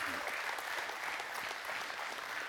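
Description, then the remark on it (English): Steady applause from an audience celebrating a couple's 46th wedding anniversary, a dense wash of many hands clapping at once with no single claps standing out, holding an even, moderate level throughout. “Thanks for clapping.”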